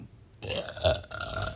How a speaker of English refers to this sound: Excuse me. I'm going to burp.